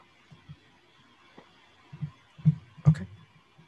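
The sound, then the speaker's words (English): Dice clicking and clattering as more are dropped in, a scattered series of small sharp knocks building to a couple of louder rattles near the end, with no talking. “That's some dice. That's some more dice in.”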